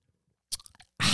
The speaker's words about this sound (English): If you heard, I just took a sip of some beautiful, clear mountain water.